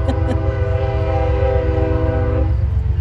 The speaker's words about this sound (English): There goes the train. All aboard.